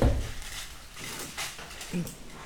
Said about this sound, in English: Give me 1 second, y'all. I'm about to close my garden door. Because my computer is right by this window. Let me just close it.